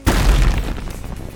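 A large vat of flues topples over with a single heavy, booming crash, loud and deep at first, then fading into a rough, rumbling clatter and splash-like noise over about a second.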